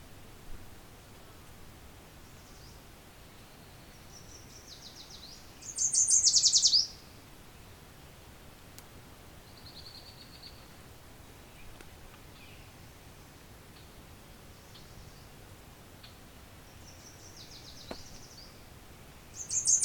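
A songbird sings short, high, bright phrases at irregular intervals while gleaning bugs from leaves to eat, one loud burst and several fainter ones, over a steady hiss of outdoor background noise.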